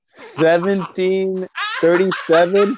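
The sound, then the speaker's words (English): A dog barks loudly, a quick run of several sharp, tonal barks with brief pauses between them. “Oh my god, yo, the dog!”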